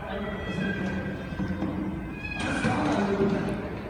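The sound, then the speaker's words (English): A cat meows in a played video of a janitor saving a cat: drawn-out, wavering cries over background noise, growing louder and brighter partway through, with what may be a faint voice underneath. “This is a cat. Janitor saves cat.”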